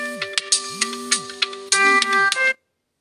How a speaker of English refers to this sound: My God, my alarm has to ring every third minute for me to be jolted.